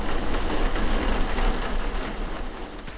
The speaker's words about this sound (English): I'm feeling a little upset because I had planned to go running, and now it's raining.